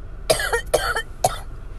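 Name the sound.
coughing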